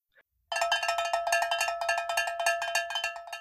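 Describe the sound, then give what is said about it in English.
A bright, metallic timer bell rings rapidly and continuously, marking the start of a one-minute round of quick questions: a fast rattling clang with a steady high ring, loud and on its own after a tiny click at the start. “So I'll, if you're ready, I'll set the timer here and then I'll start firing off some of these questions.”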